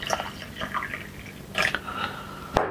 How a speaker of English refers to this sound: Right, I'm going to pour some tea out.